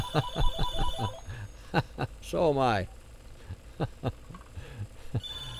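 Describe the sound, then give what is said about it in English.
A telephone rings once in a short, warbling electronic trill partway through, preceded by a quick run of rhythmic pulses and surrounded by brief bursts of voice. “I've never had this many phone calls through a show.”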